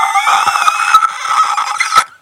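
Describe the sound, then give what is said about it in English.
A person imitates a dragon with a single loud, high, raspy screech that holds steady for about two seconds before cutting off abruptly. No speech accompanies it. “Next thing I hear is some kind of dragon noise.”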